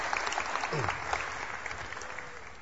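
A crowd claps steadily to thank a person who helped out that day, a dense, sustained wash of applause, fairly loud and continuous, with a brief voice murmur rising faintly underneath.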